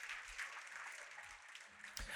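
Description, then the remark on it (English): An audience claps together in steady, sustained applause as a hand clap of praise to the Lord, a dense wash of many hands holding evenly for the full two seconds with no voices on top. “Come on, I'll put your hands together and give the Lord a hand clap of praise.”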